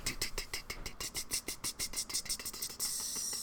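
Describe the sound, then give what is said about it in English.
A voice imitates a ticking clock with a quick, steady run of sharp, crisp clicks, about a dozen and a half, ending in a short breathy hiss. “No, it's a tick, tick, tick of a clock.”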